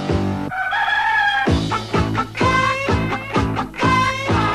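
An upbeat novelty song where rooster crowing and clucking sounds ride over a bouncy, thumping backing track, loud, with repeated rhythmic bass hits throughout.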